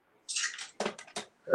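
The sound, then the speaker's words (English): A brief splashing pour of sink water into a glass as a person refills their water during a game of Uno, followed by a few quick wet clinks and gurgles, moderately loud, with no one talking. “Let me just refill this real quick, my water.”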